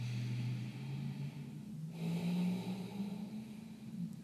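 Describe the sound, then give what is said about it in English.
A long, deep breath drawn in, a brief pause, then a slow, steady exhale during a guided meditation breathing exercise, fairly loud with no talking. “So find your breath in your body, breathing in, breathing out.”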